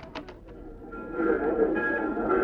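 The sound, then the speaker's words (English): A few sharp clanks open, then a steady rumbling train sound swells with a high metallic squeal or hiss layered on top, growing louder, with no voices: a train at a railway station, leaving on track 5 for Anaheim, Azusa, and Cucamonga. “Train now leaving on track 5 for Anaheim, Azusa, and Cucamonga.”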